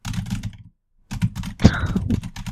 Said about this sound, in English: Make the intro just your typing sounds.